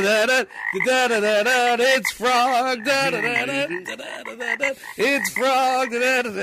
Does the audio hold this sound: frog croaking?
yes